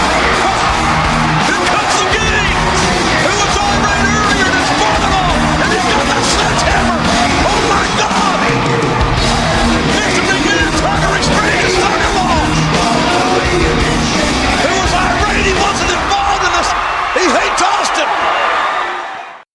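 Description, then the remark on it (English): A huge wrestling arena crowd cheers for The Rock as he comes out, in a dense, unbroken roar, with shouts and whoops rising out of it. It stays loud for the whole stretch, then cuts off abruptly at the end. “when he comes out, the crowd's like rearing to cheer for him.”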